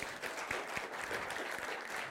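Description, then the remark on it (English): An audience applauds steadily, clapping in praise to the Lord, a dense wash of many hands clapping at an even, sustained level with a few sharper individual claps standing out. “I want to give the Lord a clap.”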